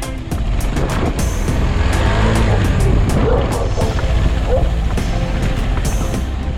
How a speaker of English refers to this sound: And we set out to ride our KTM 250 motorcycle across the island of Borneo, covering all of East Malaysia end to end.